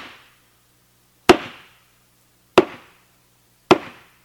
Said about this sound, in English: But what I always found really interesting at Zen Center was how they called you to practice. They have a big piece of wood, big thick piece of wood, like that thick and about this big, and they bang on it, right? They bang.